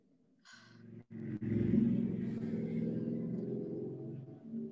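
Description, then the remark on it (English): A deep, steady engine rumble swells in after a brief start and holds loud for several seconds, the low throbbing drone of motorcycles idling and revving outside with no talk over it. “Love some motorcycles outside.”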